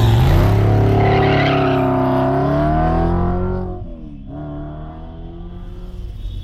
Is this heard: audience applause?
no